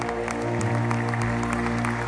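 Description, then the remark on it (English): An audience claps hands together, a dense and steady patter of many claps over a sustained low musical drone, loud throughout with no voices standing out. “Clap your hands and thank God for the blood.”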